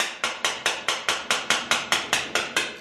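Someone raps rapidly on a metal gate, about a dozen sharp, bright clanging knocks in a quick, even rhythm, each ringing briefly before the next. No voices are heard.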